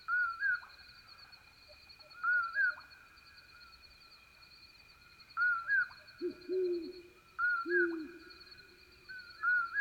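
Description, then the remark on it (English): A few low, soft hoots of a great horned owl sound over a steady insect drone, interspersed with repeated higher bird calls in a quiet setting at the transition from night into day. “In this recording, listen also for the low hoots of a great horned owl and the soft bouncing toots of a very distant western screech owl.”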